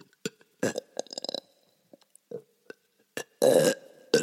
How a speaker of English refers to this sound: I need to burp.